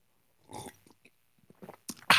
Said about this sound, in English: Oh, sip of the day. Sip of the day.